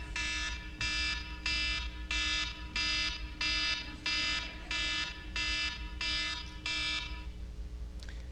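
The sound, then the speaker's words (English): An electronic alarm beeps in a steady repeating pattern, about ten loud, harmonically rich pulses roughly every half second, over a low background hum, then it stops. “What, pray tell, would cause an alarm to go off when I was talking about living ready?”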